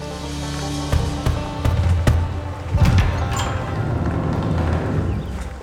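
Several dull, irregular knocks on the door of a shack, a few solid thuds spaced about a second apart, heard over a steady low background hum with no one speaking.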